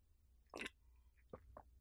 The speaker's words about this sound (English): I clearly haven't had enough coffee yet. I'll take another sip.